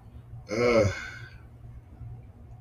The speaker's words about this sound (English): By the way, if you heard that cough I did earlier, it's because I don't have, I don't have the C word.